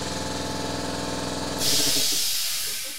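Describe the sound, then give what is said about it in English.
An air compressor runs with a steady mechanical hum and rhythmic pulsing, then abruptly releases a loud, broad hiss of air at about the midpoint that continues to the end. “But if I recall, this is the second time that freaking air compressor's gone off.”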